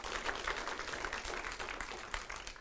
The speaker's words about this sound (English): Come on, that is worth a hand clap.